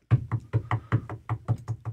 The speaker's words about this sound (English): I'm sitting at home, and, I'm just, I'm reading the paper or whatever, and you're going to knock at the door.